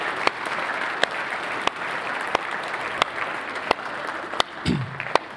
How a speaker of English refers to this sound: Let's give God a hand clap right now. Come on.